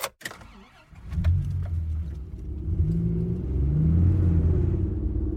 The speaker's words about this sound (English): Now that you've had enough frozen custard for the both of us, it's time to get back in the car and head to the final stop of our road trip.